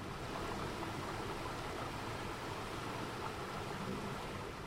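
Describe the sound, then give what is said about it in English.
A brook flows steadily, its soft, continuous rush of water holding an even level throughout with no voices or other sounds breaking in. “So do you come out here by the brook often to get a little peace?”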